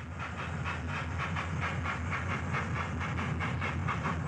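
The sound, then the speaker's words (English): A train rumbles steadily along the tracks, with a rhythmic clickety-clack of wheels over rail joints riding on a continuous low roar and hiss, fairly loud, no voices. “In 1924, she and Annie embarked on a railroad tour to give talks as a way to raise funds for the newly formed American Foundation for the Blind.”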